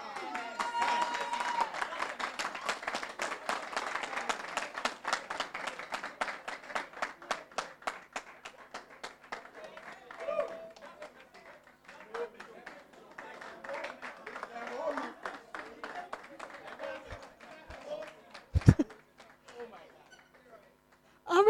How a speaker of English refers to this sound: I'm really curious why they are clapping, because they are no husbands yet.